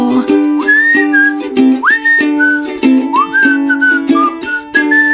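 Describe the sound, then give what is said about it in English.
Someone whistles a sliding, melodic tune in short rising phrases over steady instrumental backing music with a rhythmic beat. The whistling is clear, and no one speaks. “Well, I said I was in the mood for whistling. I didn't say I was good at it, but that wasn't too bad, right?”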